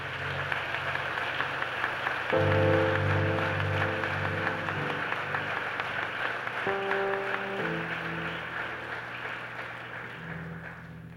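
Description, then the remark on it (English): On Father's Day, an audience claps and applauds the fathers steadily for about eleven seconds, a dense, continuous patter, while sustained organ or keyboard chords swell in underneath partway through and shift a few times. “But let's give our fathers a clap off and a praise.”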